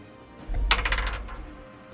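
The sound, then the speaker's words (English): A twenty-sided die is rolled, making a quick run of sharp, bright clicks and clatters as it tumbles and settles across a hard surface over about a second. Nobody speaks. “Okay, so roll a d20. I'm going to do it now.”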